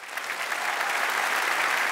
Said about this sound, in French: Et les mecs, tous ensemble, venez, on décide qu'on arrête de les harceler et on arrête de les faire chier. Applaudis si t'es d'accord avec ça.